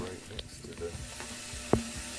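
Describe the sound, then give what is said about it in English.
A steady sizzle hisses throughout, like food frying, with scattered faint crackles and one sharp pop near the end. “I wonder how bad that sizzling is”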